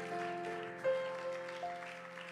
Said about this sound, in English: If you're looking forward to what God wants to do, would you give him one more hand clap of praise tonight in Jesus' name?